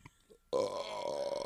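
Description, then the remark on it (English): A single loud, drawn-out burp erupts suddenly after a brief quiet moment, rumbling steadily for about a second, heard on its own without talking. “Thank you for listening to our burps.”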